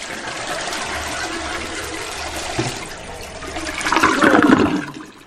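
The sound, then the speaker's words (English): A toilet flushes a goldfish away, a steady rush of water that swells into a loud, gurgling surge near the end before draining away. No one speaks. “Should have never flushed that goldfish.”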